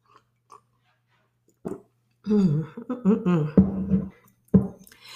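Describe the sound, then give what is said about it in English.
Wet mouth sounds of someone sipping the last of a bottle of Dust 2019 Evening Star wine from a glass: a small click, a slurping sip and swallow with a soft voiced hum, then another sharp smack near the end. “So let me take a little sip of my last so I can just, I've been sipping on it all day, but let me just finish.”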